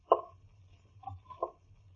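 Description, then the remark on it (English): A tree branch scrapes against a window of small 5-inch square panes in three short, creaky bursts, the first strongest, over a faint low rumble with no voices. “Branch of a tree scraping against the window.”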